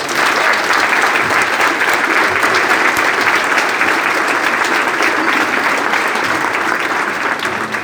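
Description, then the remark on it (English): Sustained, loud applause from an audience, a dense wash of many hands clapping steadily without pause for the whole stretch, with no voices standing out above it. “If I could stand and give that man a standing round of applause, if there's everything today, you should listen to this man.”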